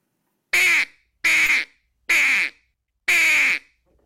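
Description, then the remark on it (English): Four long, drawn-out quacks blown on a duck call, evenly spaced and loud, each a raspy, buzzy note about half a second long with a rattling edge from the call's reeds, alone with no talking. “Yeah, it stretched that quack out.”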